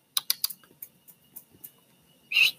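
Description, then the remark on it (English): A cat named Issa bumps into a Chromebook laptop, almost knocking it over: three sharp clacks on the keyboard, a scatter of softer taps, then a louder, rattling knock near the end. No one speaks. “I just kind of, Issa knocked into the computer, almost knocked it over.”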